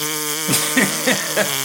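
fart

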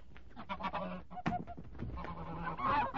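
goose honking and flapping

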